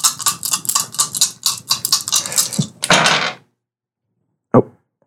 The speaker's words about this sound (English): Oh my gosh. All these metal dice in my hands.